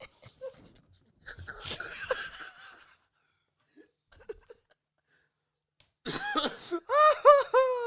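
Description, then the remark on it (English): A muffled, breathy sneeze from someone at the warehouse bursts out, followed after a quiet pause by a short scuffle of noise and then a run of bright, rhythmic laughter. “If we can hear him sneeze, he can absolutely hear us laughing.”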